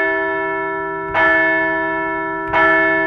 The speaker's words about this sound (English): Let's ring the bell for the Fightins as they continue to roll.